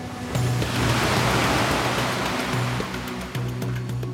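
Ocean surf washes steadily onto shore with a full, hissing roar that dips briefly and surges back, while a low tonal hum runs beneath it. No one speaks.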